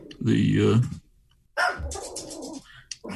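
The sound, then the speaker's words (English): A dog lets out one loud, drawn-out bark, then after a short pause gives rougher, noisier barks that trail off near the end. “Is that how they responded, by barking?”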